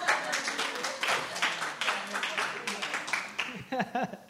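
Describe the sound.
An audience claps in a dense, steady round of applause that carries for several seconds, then thins near the end as a voice begins to come through.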